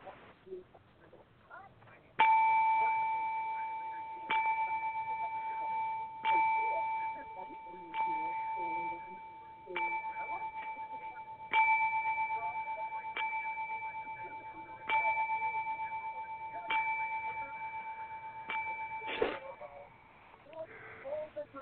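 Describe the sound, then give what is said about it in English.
A ten-bell salute: a single bell is struck about ten times at a slow, steady pace, each clear metallic ring sustaining and overlapping the next, with faint low background murmur underneath. “And for that, we now pay and pause for the 10 bells.”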